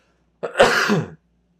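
A single sneeze bursts out on its own, a short, loud, breathy blast that lasts under a second and cuts off into silence.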